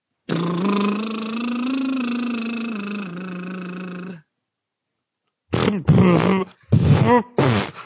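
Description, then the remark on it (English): A voiced motorboat lip trill, demonstrated as a vocal warm-up, hums for about four seconds at a steady low pitch that dips slightly. After a pause come four short, choppy buzzing trill bursts. “You're motorboating someone. If you want to do this as a vocal warm-up, all you have to do is sing behind that sound.”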